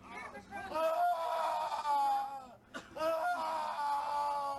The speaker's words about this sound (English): That guy is screaming way too much.